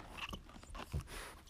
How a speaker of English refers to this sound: Oh, Stella. Oh, yeah. No, no, no. They want to hear the chewing.